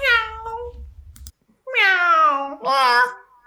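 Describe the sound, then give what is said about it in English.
A person voices exaggerated cat meows, three drawn-out, pitch-sliding calls with a brief pause after the first, fairly loud, with a faint low rumble beneath the opening call. “Meow. Meow. Meow. Meow.”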